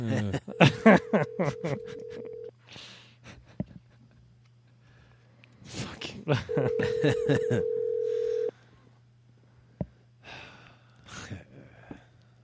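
An unanswered phone call to a woman rings twice over the receiver, each steady two-second tone followed by a long pause, with a low line hum, muffled laughter and breathing.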